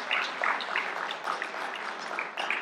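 A crowd applauds steadily, a dense crackle of many hands clapping at once that holds an even loudness throughout with no voices over it.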